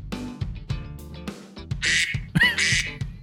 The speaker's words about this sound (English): I'll do the ducks. So for the whole vacation, I woke up to ducks